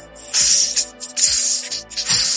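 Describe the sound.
A voice imitates a hissing snake in a jazzy rhythm, as snake jazz: three loud, breathy hiss bursts with soft low thumps between them, no speech.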